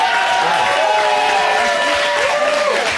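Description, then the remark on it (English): An audience claps for Fresh and Fit in a dense, even wash of applause, loud and sustained throughout. Faint cheering is mixed in, and no single voice stands out. “By a round of applause, who wants to see us do this again in a matter of no time?”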